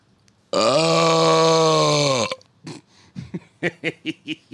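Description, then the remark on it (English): A long, loud burp rumbles steadily for nearly two seconds, then cuts off and is followed by a quick series of short, rhythmic bursts that sound like laughter. “That burp meant fucking business.”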